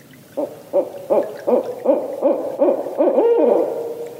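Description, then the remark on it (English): A barred owl's rhythmic series of territorial hooting calls, about nine evenly spaced hoots rising into a drawn-out, slurred final note, clear with no talking; recording from the Macaulay Library at the Cornell Lab of Ornithology. “The sounds you've been hearing of the barred owls calling were given to us to use by the Macaulay Library at the Cornell Lab of Ornithology.”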